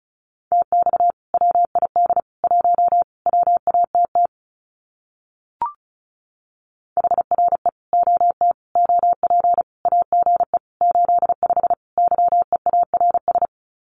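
Rapid Morse code sent at 35 words per minute, keying common QSO phrases, beeps in tight bursts at a steady mid pitch, broken by a short pause with a single click, then the fast keyed dots and dashes resume. No voices are present.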